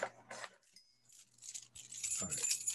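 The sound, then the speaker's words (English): Keys on a ring jingle and clink in a few quick, bright shakes, with a short metallic ring between them, moderately loud, ending in a busier burst of rattling. “Let's see, here's my keys.”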